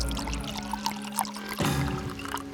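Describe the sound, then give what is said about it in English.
Wine pours steadily into a large glass for a couple of seconds, a gurgling stream whose pitch shifts as it fills, with no voices. “Colum poured himself a large glass of wine.”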